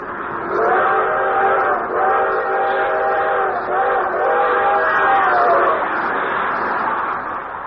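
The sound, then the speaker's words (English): The whistle of the 20th Century Limited passenger train, speeding through the countryside, sounds in long, drawn-out chord-like blasts, about three joined together, loud and steady for several seconds before fading away. “One thing he especially liked was the long, drawn-out whistle of the 20th Century Limited as she highballed it through the countryside.”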